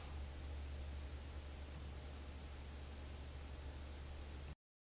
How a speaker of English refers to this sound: You hear static?